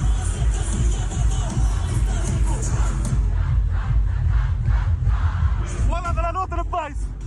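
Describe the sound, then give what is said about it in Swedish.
A large festival crowd sings along to a song the performer is playing, a loud, continuous roar of massed voices with a heavy low rumble, and the performer's voice calling out to the camera above the crowd near the end. “Men när jag spelade den låten och de sjunger, jag har aldrig hört en publik sjunga så där.”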